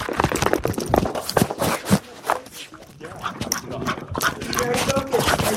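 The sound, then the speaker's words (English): A dog runs down a hard-floored hallway after a thrown ball, claws and paws clattering in quick, irregular bursts, loud, with a bouncing thump mixed into the patter. “A ball is thrown down the hallway. This is what it's like to be Ray Ray.”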